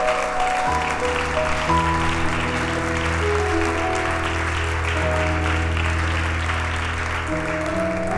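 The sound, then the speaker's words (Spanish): A crowd claps steadily for about eight seconds, a dense, even wash of applause layered over sustained keyboard or organ chords that shift a few times. “Y haré un aplauso bien grande a eso.”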